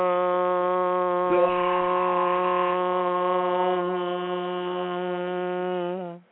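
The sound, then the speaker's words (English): A long, steady, buzzy dial tone holds one low, harmonically rich pitch for about six seconds without a break, then wavers briefly and cuts off abruptly. “Actually, let's give them an extended dial tone.”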